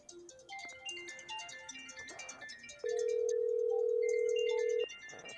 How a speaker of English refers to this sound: You hear how loud his phone is? That's a loud phone.